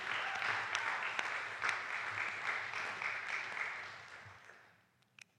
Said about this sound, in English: We love people who come on the Chi Alpha team, but there's something special about being able to send people out. We can clap for that. That's good.